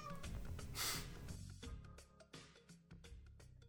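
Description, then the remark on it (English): A cat meows faintly in the background beneath a busy, dense mix of other sounds, its thin cries barely rising above the clutter. “I like the cat meowing in the back.”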